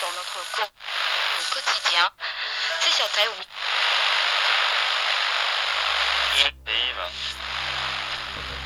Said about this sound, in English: Turn your dial to the edge of the radio static, and there, you will find the lost signal.